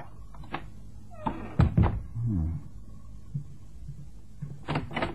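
The door of a flat in Hampstead is pushed open: a few soft knocks, then a heavy wooden thud and a brief low creak of hinges, followed by scattered light bumps.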